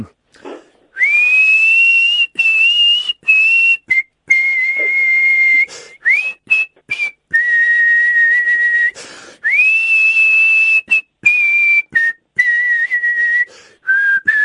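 Someone whistles a melody, holding bright sustained notes that slide between pitches, with short breaths and pauses breaking up the phrases. No talking, just the whistled tune.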